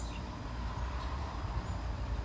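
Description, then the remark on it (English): Faint, scattered bird chirps rise now and then above a steady outdoor rumble, a few short high calls spaced across a couple of seconds, with no one talking. “Can you hear those birds?”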